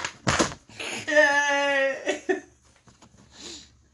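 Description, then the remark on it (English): Dice are rolled onto a table, clattering in a few short, sharp knocks. A sustained voiced cry rings out between the rattles, followed by quieter breathy sounds. “And he is now going to actually roll them.”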